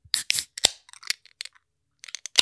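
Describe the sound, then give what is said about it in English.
A bottle of Tastes Like Midnight, an imperial stout with chocolate chip cookies, being opened: a quick series of sharp metallic clicks and scrapes, ending in a crisp snap, with no one talking. “And I got some questions after we open it, but let's go and open it, get into it.”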